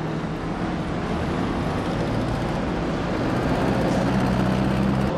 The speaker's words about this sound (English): as the trucks actually start to circle the gas station.